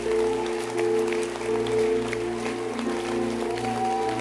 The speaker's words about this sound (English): Can you clap your hands for pastors? They are trying. I said they are trying.